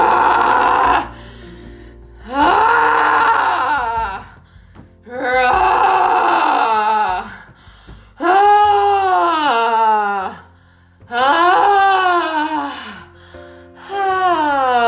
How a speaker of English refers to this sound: Let's get into a little growling.